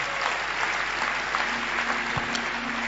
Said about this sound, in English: Clap your hands and thank the Lord.